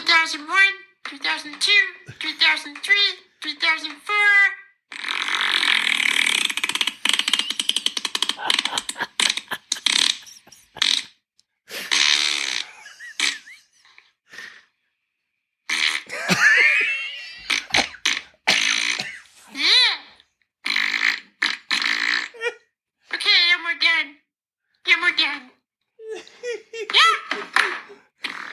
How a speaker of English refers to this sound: Okay, that one just said Elmo farting.